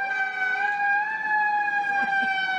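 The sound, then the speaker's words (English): A New York City fire truck siren and big horn blare in one loud, sustained, steady tone that barely wavers across the whole stretch, with no voices. “So this is a fire truck you're about to play. It's a fire truck.”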